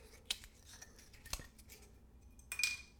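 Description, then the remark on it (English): Foil seal being torn off a bottle of Talisker whisky, a few sharp crinkling rips with a brief scratchy tear near the end, quiet and with no talking. “Taking the foil. It's like a little zipper. Get that off.”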